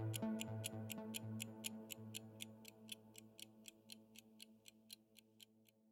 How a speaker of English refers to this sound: That's less than 2 months away, so the clock is ticking.